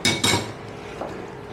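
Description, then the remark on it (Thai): A knife chops green onions into pieces a little over an inch long on a cutting board: two sharp knocks in quick succession, then a softer single chop a moment later, with no talking. “หั่นหอมครับหั่นต้นหอม หั่นต้นหอมเดี๋ยวฉันอันนี้ก่อนจากอันนี้ก่อนเข้ามาค่ะ หั่นต้นหอมท่อนละนิ้วกว่า”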